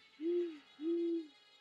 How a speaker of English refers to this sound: You see an owl flit that on the lightest of wings lands on a branch.